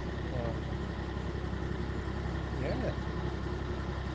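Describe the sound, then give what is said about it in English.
An engine runs steadily throughout, a constant low, rumbling idle, with a couple of faint bird chirps rising briefly above it, beside a quiet tree-lined canal. “It's really quiet apart from the birds and the sound of the engine, I suppose.”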